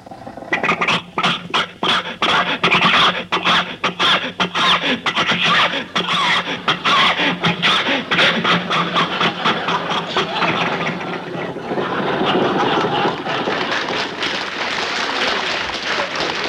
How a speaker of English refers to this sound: Do you think your car will make this hill, Jack? Sure. Rochester, give it a little more gas.